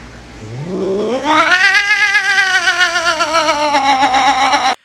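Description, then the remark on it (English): A cat lets out a long, unhappy yowl that climbs in pitch, then holds a loud, wavering wail for several seconds before cutting off. There is no talking. “and I can't tell if the cat seems to like it or not.”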